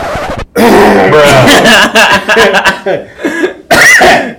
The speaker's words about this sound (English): I had to cough for a second.